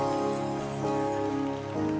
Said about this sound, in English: Clapping your hands. Don't stop clapping your hands. Those of us who are online, clap your hands.